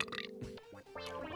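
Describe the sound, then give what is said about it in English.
A single long, loud belch, a throaty, wavering rumble that stretches over a second and shifts in tone as it goes. “we're back because we left with a burp on the record.”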